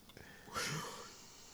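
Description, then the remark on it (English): A man turns on a faucet after a brief rustle, and water runs in a steady, soft hiss that continues to the end, fairly faint. “See, right there, he helps him. He turns on the water for him.”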